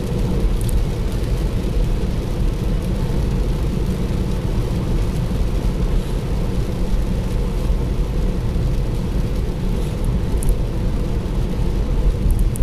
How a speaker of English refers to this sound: I'm in the little hire car, winging it down the M1, heading down to my mum's.